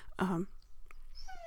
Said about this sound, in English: The dog here is desperately asking for my help.